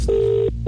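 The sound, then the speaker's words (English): A steady electronic ringback tone of an outgoing phone call, one sustained burst then a short gap before the next begins, clear with no one speaking. “Supercomputer's ringing.”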